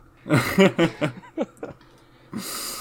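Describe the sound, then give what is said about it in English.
Breathy exhalations into a microphone after doing press-ups, a run of short voiced huffs, almost like stifled chuckles, followed by a longer, noisy rush of breath. No speech. “Sorry for the deep breathing into the microphone now.”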